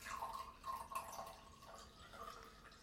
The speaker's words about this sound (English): She's just pouring herself more wine.